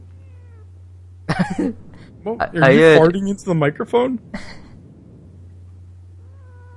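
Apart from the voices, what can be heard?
cat meowing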